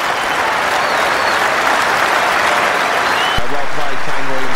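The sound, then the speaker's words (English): A large cricket crowd at Lord's applauds steadily as Kane Williamson brings up his hundred in his first Test match there, a dense wash of clapping that stays loud throughout, with a commentator's voice coming in over it near the end. “First time at Lords, 100 on his first test match here and getting a great applause.”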